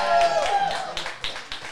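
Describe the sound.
A brief round of applause: scattered, uneven claps over a murmur of crowd voices, with a thin whistle-like tone early on and a few sharper claps standing out toward the end.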